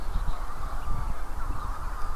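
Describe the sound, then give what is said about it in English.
A dense, continuous chorus of seabird calls from many birds in burrows all over an island in full darkness, steady and fairly loud, with harsh croaking notes overlapping throughout, an occasional gull, and no talking. “This might hear the occasional gull, but all that sound, it's burrows all over the island, opening up.”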